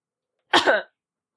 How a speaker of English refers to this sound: Sorry, I cough when I'm nervous.